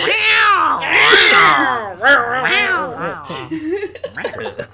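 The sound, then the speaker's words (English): A person imitates an angry cat with loud, strained yowls that swoop up and down in pitch, a long wavering cry followed by several shorter, sputtering ones. “That sounded more like an angry cat. Cat sounds like...”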